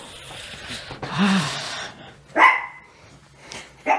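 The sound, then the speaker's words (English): A dog named Bobo barks a few times in short, sharp bursts, with brief pauses between barks and a soft yip near the end. “Okay, this is Bobo. Bobo, who keeps interrupting the show.”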